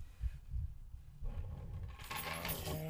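Soft low thumps and handling noise, then a bright metallic jingle of keys being dropped and rattling for the final second, fairly quiet, with no talking.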